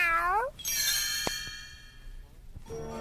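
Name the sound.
kitten meowing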